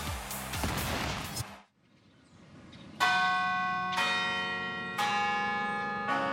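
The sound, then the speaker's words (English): The large bells of the 120-foot-high campanile at the University of Kansas in Lawrence strike four times at a steady one-second pace, each ringing with rich overtones and a long hum that overlaps the next, after a brief burst of broad noise fades out. “to 9 p.m., the bells of the 120-foot-high campanile keep time for the University of Kansas.”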